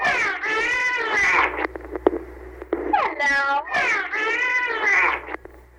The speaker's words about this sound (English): First, listen to this segment with the idea that the dolphin is mimicking the girl's hello. He is drawing it out and using several vowels, which may be present in short form in the girl's presentation.